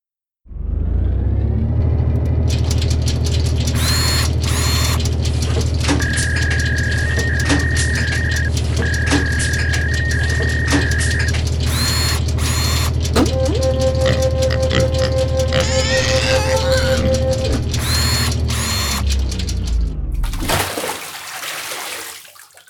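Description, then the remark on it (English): A mechanical contraption, a random number generator, whirs steadily for about twenty seconds, with clunks, whines and a splash as its output drops into a bucket of water, then it winds down and stops. No one speaks. “And the random number generator this week has returned its output in a bucket of water.”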